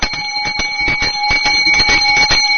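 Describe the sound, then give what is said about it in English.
A boys' school bell at a school for the blind rings continuously, a loud metallic clanging with steady rapid strikes and bright high tones sustained across the whole clip, with no voices. “Now, that was a boy's bell.”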